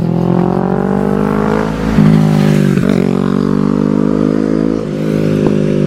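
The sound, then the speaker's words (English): A motorcycle engine roars as it drives past, a loud, steady rumble whose pitch rises and dips slightly as it passes, with no voices over it. “I think Blade just drove past me on his motorcycle.”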